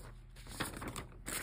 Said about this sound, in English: ASMR turning pages.